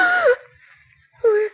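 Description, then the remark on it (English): A woman in bed at night opens her eyes and lets out a stifled scream: two short, strained high-pitched cries that slide downward in pitch, separated by about a second of near silence. “Slowly, Mary opens her eyes and stifles a scream.”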